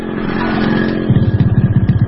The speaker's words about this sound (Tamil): Inspector மதனுடைய வீட்டு வாசல்ல போய் வண்டியை நிறுத்தும் போது அங்க வாசல்ல ஒரு ஆம்புலன்ஸ் நின்றுட்டு இருக்குது.